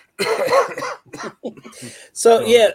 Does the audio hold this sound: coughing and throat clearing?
yes